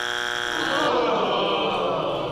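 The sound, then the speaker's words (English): A harsh, buzzing game show buzzer blares steadily for about two seconds, loud and rich in harmonics, its tone shifting slightly partway through before cutting off. “I even let you buzz in first.”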